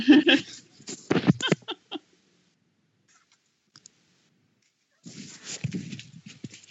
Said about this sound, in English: No, I just had to blow my nose. Sorry. Try not to sniff, and now I'm like being gross.